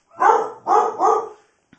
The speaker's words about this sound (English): Harpo, that's enough. Hush. Wait, there's a dog out there. Harpo. Come here, Harpo.